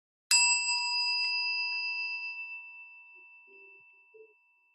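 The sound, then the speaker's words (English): A single meditation chime is struck once, ringing out clear and bright with several sustained tones that slowly fade over a few seconds in an otherwise quiet space. “Allow the sound of the chime to call you to presence.”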